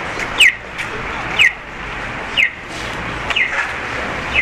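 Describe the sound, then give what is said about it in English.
An accessible pedestrian crossing signal for blind people, sounding when pedestrians may walk, chirps steadily, five short sharp descending chirps about a second apart, ringing out clearly over a low hum of street traffic. “The walk lights when you can walk.”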